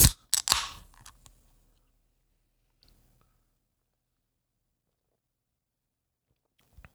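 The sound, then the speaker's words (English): A drink can snaps open with a sharp crack and a short burst of fizzing hiss that fades within a second, then near silence with faint soft sounds, ending in a small clunk. “Y'all, you ready to, crack this thing open and give it a chug?”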